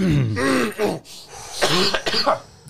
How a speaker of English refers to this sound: I'm clearing my throat.